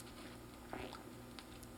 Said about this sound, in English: Wow. That was a big gulp. He went for it. That was a big gulp.